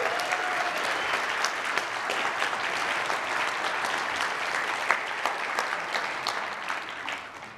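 A crowd at a Christmas church service applauds steadily for several seconds, a dense patter of many hands clapping at a fairly even loudness before starting to taper off at the end.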